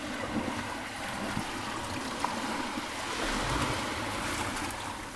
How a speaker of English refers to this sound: The sea ebbing, leaving wet sand and white foam residue.